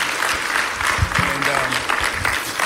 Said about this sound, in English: If you believe that, why don't you clap your hands and make some noise.